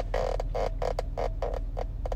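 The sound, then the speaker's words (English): A car seatbelt squeaks at the plastic buckle where it clips in, about nine short, fairly loud squeaks in a loose rhythm, over the steady low rumble of a car being driven. No one speaks. “If you hear that squeaking, maybe I need some WD-40 on my seatbelt.”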